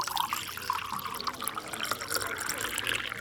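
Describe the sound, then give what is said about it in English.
Water pours steadily into a container, a continuous splashing and trickling that lasts about three seconds with no talking. “Can we have some water? Yes, of course.”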